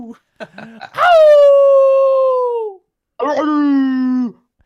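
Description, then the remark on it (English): A few short yips lead into two long, drawn-out dog howls, loud, each sliding slowly downward in pitch before trailing off, with a brief pause between them; the dogs howl back in response to a person's howl. “Every time you do that, they instinctively howl back at you.”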